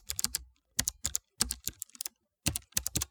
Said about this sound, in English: Oh, my God. You're typing like crazy.